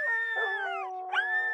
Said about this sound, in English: In a separate show, one of the artists later recorded the sounds of sad dogs howling for the public.